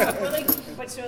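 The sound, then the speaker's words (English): A short jingle of metal keys being handed over, with a couple of bright rattling bursts, heard over a voice talking in the background. “don't give him the keys. Don't give him the keys.”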